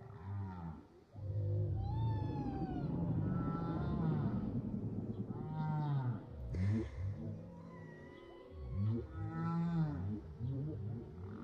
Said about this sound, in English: It sounds like a beautiful symphony because there's so many different whale songs for each variety.